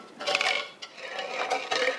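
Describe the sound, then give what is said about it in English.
Empty cat food cans, labels removed, tossed down a ledge and tumbling to the water's edge: hollow metallic clattering and clinking rattles on continuously for a couple of seconds, bright and jangly, with irregular bursts of knocks and scrapes. “The empty cat food cans, with labels removed, sang and clattered all the way down to the water's edge.”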